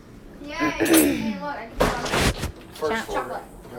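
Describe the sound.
A door bangs open with a loud, broad clatter, and voices, some sounding like children's, chatter just before and after as people come in with donuts.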